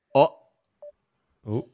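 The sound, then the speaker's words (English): A single short, mid-pitched electronic telephone beep sounds on its own, set between two brief voiced utterances from a person before and after it, as a phone call is being connected. “I hear the beep beeps.”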